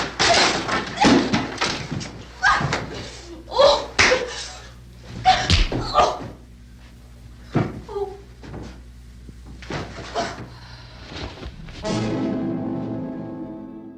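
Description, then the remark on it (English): A rapid run of sharp, loud face slaps cracks back and forth between a woman and a man in a 1968 film, with grunts and gasps between them, ending in a drawn-out strained vocal cry. “In 1968, progressive is only slapping a woman after she slaps you.”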